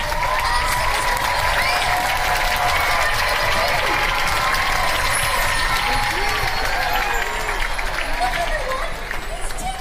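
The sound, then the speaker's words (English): A large theatre audience, including the balcony, claps and stamps its feet in a dense, unbroken roar that stays loud and steady throughout, with faint crowd voices mixed into the din, before Disney's Believe is presented. “Clap your hands, stab your feet, go!”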